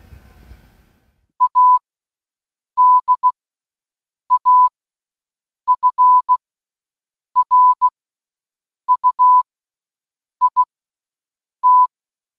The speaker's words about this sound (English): And let me send O. And then I'm going to send K. There you go. So wireless Morse code transmission between two clue boards using Bluetooth.